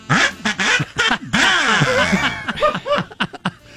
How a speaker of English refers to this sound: Oh, that was a loud kazoo. Yeah. Sounds like an 11-foot duck.